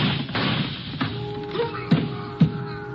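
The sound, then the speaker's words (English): A few gunshots ring out on a pier beside a warehouse, fired at a man walking along the pier: about four sharp cracks at uneven intervals, muffled and moderately loud over a steady low hum and background noise. “The shots came from my left, and I can hear someone running along the pier.”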